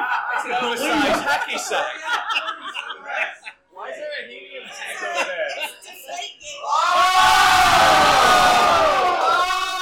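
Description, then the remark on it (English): Voices talk and murmur for several seconds during live ball kick-ups in a radio studio, then a group erupts into loud, sustained cheering and yelling that fills the final three seconds. “Do you want to cheer?”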